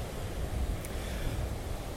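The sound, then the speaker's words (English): A steady, rumbling wash of ocean surf breaking on a beach, heavy in the low end, rolling on continuously without a distinct single crash, moderately loud with no voices, heard while walking along the ocean. “When I'm at the beach, when I'm walking along the ocean, I am more able to dream, to daydream.”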